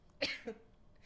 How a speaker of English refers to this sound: I have to sneeze.